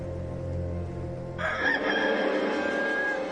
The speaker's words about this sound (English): And at once, a rooster crowed.